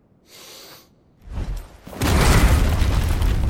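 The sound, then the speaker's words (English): A faint hiss gives way to a heavy low thud, then a loud, sustained crash of breaking stone and rumbling debris as the giant Kupka punches a solid block-stone throne and it explodes. “Punches the shit out of the chair. A stone throne.”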